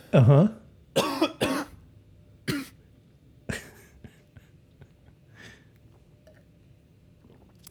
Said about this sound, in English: This is a new cough, huh? Nope. Same cough.